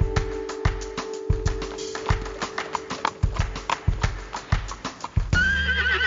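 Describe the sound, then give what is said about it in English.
A horse's hooves clip-clop in a steady rhythm of sharp knocks, then the horse lets out a loud, quavering neigh near the end. No one speaks. “I'll post-amble at you after this noise made by a horse.”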